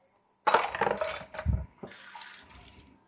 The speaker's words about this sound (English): Okay. So we're just pouring our marmalade mixture over the top.